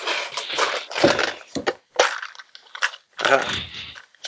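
Dice rattling and clattering as they are shaken and rolled for an outthink roll, in a series of uneven, sharp bursts separated by brief pauses, fairly loud, with no talking over them.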